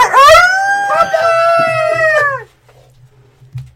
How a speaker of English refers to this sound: What? Is that the wolves? Are the wolves coming?